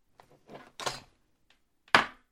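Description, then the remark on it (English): A handful of hard knocks on a wooden table, uneven in spacing, with two loud raps standing out among softer taps, as a judge knocks on the table in place of a gavel. “Well, since you're a judge, if you knock, it counts.”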